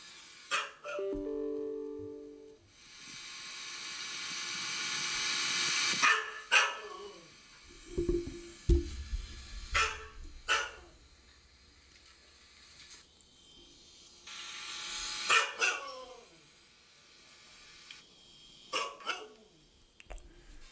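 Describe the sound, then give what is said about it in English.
A Siberian Husky in a training area barks in sharp, scattered bursts, some stretching into a brief howl-like wail, with hissy background noise and quieter stretches between the outbursts. “I thought I heard a dog barking." And it was just kind of a different bark. It was like a bark and a howl.”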